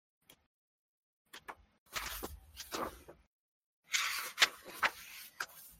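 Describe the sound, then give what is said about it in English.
A few sharp latch clicks, then an unlocked door being opened with two bursts of scraping and rattling noise punctuated by knocks; nobody speaks. “the door is once again unlocked. Ludwig, as you open the door”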